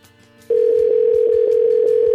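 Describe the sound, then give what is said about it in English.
An outgoing call back to a woman rings on the phone line: a loud, steady tone starts after a short quiet moment and holds without a break, with faint soft knocks in the background. “She didn't sound like the type to pick the phone up again.”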